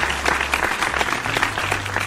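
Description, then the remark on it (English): A steady round of applause from many hands, dense crackling claps running unbroken for about two seconds at moderate loudness, with no voices over it. “Real quick, man, before we get it started, round of applause for everybody who went online and bought some merchandise.”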